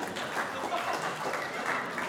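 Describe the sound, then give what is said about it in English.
A church audience applauds after a Bible reading from Colossians, in a steady, dense wash of clapping that holds at an even level for a couple of seconds, with no distinct single claps standing out. “You only get an applause on your first one.”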